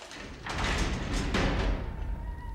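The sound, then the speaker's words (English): A heavy door, opened by guards, scrapes and rumbles open with a deep, grinding drag lasting over a second, fairly loud, then settling into a low fading hum. “Guards, open the door.”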